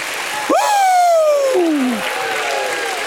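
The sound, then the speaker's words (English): An audience stands and claps for God as one loud voiced shout of praise swoops up, then glides steadily down in pitch over about a second and a half, with the applause carrying on beneath it. “Stand to your feet and give God a hand clap and a shout of praise.”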